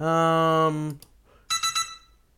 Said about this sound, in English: Oh, hang on. We got an alarm there.